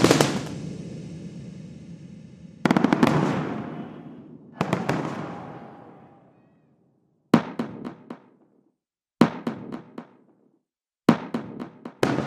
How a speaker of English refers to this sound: I've already mentioned how important it was for the production that these explosions felt like they were taking place in an urban environment.